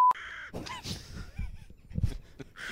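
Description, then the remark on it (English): A raven caws several times in quick succession, harsh, raspy and loud, used as a segment sound effect, with no voices or other sounds around them. “Got to climb the tree, scale a few branches. We're headed into the Raven's Nest.”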